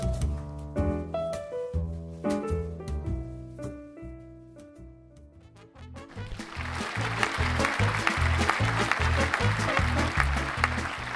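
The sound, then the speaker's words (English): A short tonal musical phrase plays for several seconds, then gives way to a loud, sustained burst of applause, dense crackling clapping that continues steadily to the end. “Joyce, you shouldn't have provoked it if you weren't ready to be clapped.”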